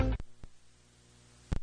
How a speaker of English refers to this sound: You hear those notifications? That's small businesses in America taking off on TikTok.